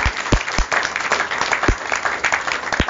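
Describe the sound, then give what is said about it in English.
An audience at a comedy night claps steadily for a few seconds, a dense, even patter of many hands with scattered sharper claps standing out, fairly loud throughout with no voices. “Would you clap for me, because I was hilarious?”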